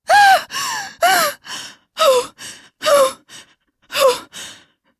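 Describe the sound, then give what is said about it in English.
A person who has just woken and sat up in the dark gasps for air again and again, loud, with short ragged intakes of breath in an uneven rhythm and brief voiced catches between them. “I sat up. I was gasping for air.”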